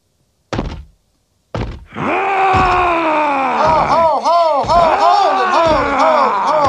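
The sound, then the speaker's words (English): Two heavy thuds, then the Incredible Hulk's loud, drawn-out scream, a sound effect labelled 'Hulk Running', that wavers and swoops in pitch, rising and falling in repeated arcs until it cuts off. “Too slow? Forget that. The guy's screaming.”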